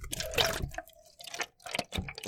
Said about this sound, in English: I'm pouring you up a nice drink, everyone listening at home. I know the holidays can be rough. We're going to ease you into the week right here with a nice little tall glass.